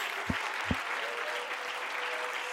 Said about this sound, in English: Come on, everybody, clap your hands to the Lord together.